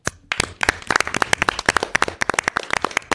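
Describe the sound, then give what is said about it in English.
A crowd breaks into applause for Randall Klein's vision and execution of SF Jazz, many hands clapping in a dense, crackling patter with sharp individual claps standing out, sustained steadily and fairly loud with no voices heard. “And I think I would just like to give a round of applause to Randall Klein for his vision and his execution of SF Jazz over these many years.”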